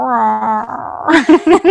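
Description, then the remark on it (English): A dog gives a drawn-out, high whine that wavers briefly before a person starts talking, the whimper fairly loud at first. “Do you hear my dog in the background?”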